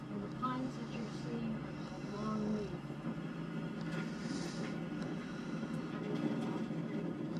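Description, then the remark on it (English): A tram rumbles steadily along a rough sand road as it takes a shortcut, its low droning and rattling continuous throughout, with faint voices murmuring in the background. “Okay, so apparently our tram is going to take a secret shortcut here through this sand road.”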